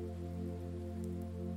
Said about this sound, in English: Dark grey 4x4 moves effortlessly along the tarmac. Each of its large tyres sprays a small waterfall of raindrops as the car glides along the wet surface of the road.